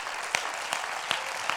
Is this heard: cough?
no